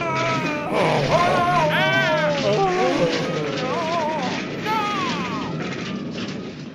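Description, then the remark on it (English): A spaceship crashing into a planetoid: a loud, steady roar of noise with warbling, whining electronic tones sliding up and down over it for several seconds. “Oh my god, again, we're crashing into that planetoid!”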